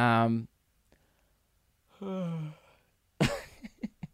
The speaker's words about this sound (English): I just did like a half yawn, you know, when you feel a yawn coming, but then it runs away, and then you just end up looking like that cat with brain damage that I mentioned before.